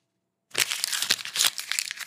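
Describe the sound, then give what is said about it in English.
Crisp crackling of a real paper banknote being crumpled, starting after a brief silence and continuing as a dense run of sharp crinkles and snaps, with no talking. “Now I'm going to crumple a real bill.”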